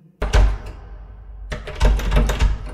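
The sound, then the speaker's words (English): Someone tries the heavy locked stone door of a stone enclosure that won't open: two loud bursts of thudding and rattling, the second longer, with no voices. “It's locked. Can you get inside?”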